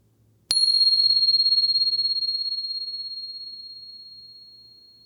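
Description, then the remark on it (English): A meditation bell is struck once, giving a bright, high-pitched ring that hangs steadily and fades slowly over several seconds, with no voices and only a faint low rumble underneath. “And here comes the bell.”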